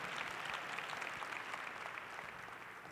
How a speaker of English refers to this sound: And let's give our Mother Willie Way May Rivers a rousing applause.